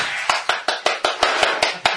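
Applause heard as a steady run of sharp, evenly spaced claps, about ten in two seconds, fairly loud with a hissy wash between them and no voices.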